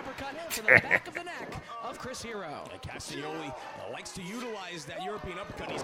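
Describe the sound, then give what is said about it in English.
A wrestler's body slam and leg drop land as two quick, heavy thuds on the ring mat near the start, followed by steady talking voices that continue to the end. “Oh, I love the fluid motion body slam into leg drop.”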